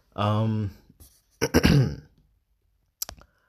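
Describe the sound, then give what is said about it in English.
A person clears their throat with a drawn-out, voiced rasp, then gives a couple of sharp coughs, followed after a pause by one more brief cough, close to the microphone. “Coughing Throughout The Entire Episode”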